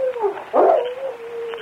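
A dog named Wolf whimpers in a thin, steady whine, breaking into one short, sharp bark partway through before whining on. Fairly loud, with no talking.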